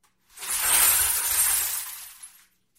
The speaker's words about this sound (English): A hand crank that just spins this drum, and the outside is covered in mesh wire, and the inside is just filled with glass. I'll show you what that sounds like.